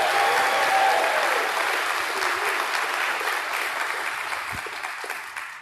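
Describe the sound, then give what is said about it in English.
An audience breaks into sustained hand clapping for the church's youth, a dense wash of many claps that stays loud throughout and eases off slightly toward the end, with no one speaking. “Let's give our youth a big hand clap of praise.”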